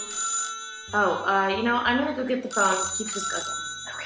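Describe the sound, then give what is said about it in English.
A telephone bell rings in short, loud bursts, three rings with brief pauses between them, while people talk over and between the rings. “I'm gonna go get the phone.”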